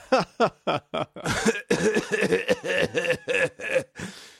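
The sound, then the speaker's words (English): A person fakes a rapid string of about a dozen short, loud coughs, mimicking an audience of about 50 people coughing at cigarette smoke from a stage, with a few throaty, chuckle-like bursts mixed in and no talking. “They'll just start coughing.”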